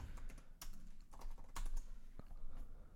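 Rapid typing on a computer keyboard as someone types in "Harlequin Golf", a steady stream of light clicking keystrokes with a few sharper, louder taps scattered through, no voices over it.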